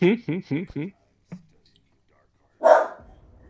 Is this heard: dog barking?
yes